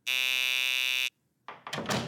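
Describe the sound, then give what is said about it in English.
A door entry buzzer gives one loud, harsh, steady buzz lasting about a second, then cuts off; after a short pause comes the clunk and rattle of a door opening. “I'll buzz you in.”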